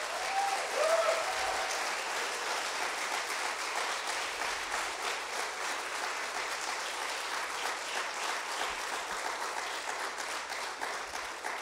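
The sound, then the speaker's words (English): A large crowd in a church applauds their pastor steadily, a dense wash of clapping hands that holds at an even level for about ten seconds with no voices standing out. “And if you could just give me the privilege of giving a round of applause to your pastor”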